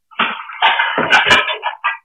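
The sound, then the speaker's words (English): A table tips over with a loud, clattering crash: a quick series of bangs and rattling impacts over about two seconds, as items scatter and settle. “Oh, you just knocked the table over.”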